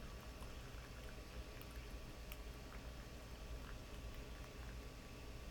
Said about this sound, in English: And then once we're here, we can slowly add water over the leaves, holding back the stream a bit so that there's some sound, there's some tension in the water, we can see the twists and turns of the stream.